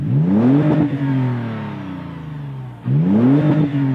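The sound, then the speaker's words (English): A car engine with a Borla exhaust revs twice: a deep, throaty rumble climbs in pitch, slowly winds back down, then a second sharp rev surges up. No one speaks. “you've been playing a note for a Borla exhaust and trying to stump me”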